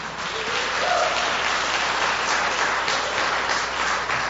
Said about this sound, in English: If you can give him a round of applause.